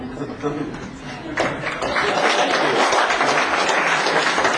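An audience breaks into applause after a brief murmur, the clapping swelling quickly into a dense, steady patter that holds loudly to the end, with faint chuckling mixed in.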